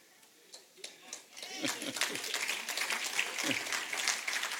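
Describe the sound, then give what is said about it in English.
An audience in Friendswood, Houston, breaks into clapping, starting with a few scattered claps and swelling into steady, dense applause, with cheers and voices mixed into the crowd noise. “Houston, they're clapping here in Friendswood.”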